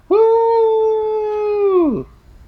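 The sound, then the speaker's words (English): A single loud, drawn-out whooping cheer from one voice, held steady for about two seconds before sliding down in pitch, much like a wolf howl. No other talking. “That was like a wolf howl.”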